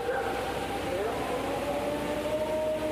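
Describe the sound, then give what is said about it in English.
A tornado warning siren holds a long, steady wailing tone that slowly rises in pitch, sounding continuously over a dull background rumble for the whole stretch. “It sounds like an air raid. It's a tornado warning.”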